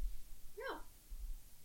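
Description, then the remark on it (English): A single short, high whimper from a puppy, rising and then falling in pitch, fairly quiet against a low background rumble with no talking. “I might have to go through and edit that a little bit so you don't hear the puppy.”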